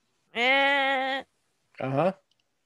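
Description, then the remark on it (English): A voice bleats like a goat twice, a long wavering bleat followed after a short pause by a briefer, quavering one, both loud with no talking. “She's become part goat.”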